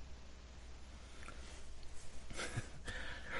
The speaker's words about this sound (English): We're both coughing tonight.